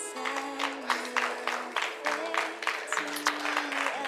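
A church audience breaks into sustained applause, giving God a praise clap during a morning service, the crowded clapping steady and bright throughout, with a held organ chord shifting underneath. No speech is heard.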